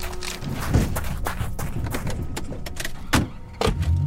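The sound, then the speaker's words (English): Shuffling and rustling with a few thumps and clicks as people climb into a car and settle into seats, ending with a door-like thud; no one speaks. “I think you're right. Get back in the car.”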